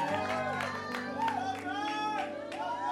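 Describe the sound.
An audience at a church service bursts into applause and cheering after a prayer, steady clapping blended with overlapping whoops and shouted voices, holding at an even, lively level throughout.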